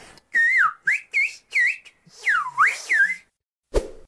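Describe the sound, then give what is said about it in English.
Recordings of whistled English speech: several short whistled phrases with sliding, swooping pitch contours, grouped like the syllables of spoken sentences, loud with brief pauses between bursts, ending with a short click. “Like, take a listen to these recordings of whistled English,”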